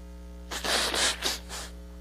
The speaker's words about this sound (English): I need to blow my nose. Y'all excuse me.